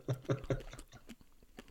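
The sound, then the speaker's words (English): Crunching of a Nobbly Bobbly ice lolly being chewed: three loud bites in quick succession followed by quieter, scattered crackles as the chewing settles down. “I've never, like, they're not popping candy or anything, but the texture, the crunchy texture is really nice. It's a very pleasing thing to put in your mouth.”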